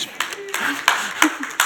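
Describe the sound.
A brief round of scattered clapping from a church audience, with a handful of distinct claps at an uneven pace and faint voices murmuring underneath.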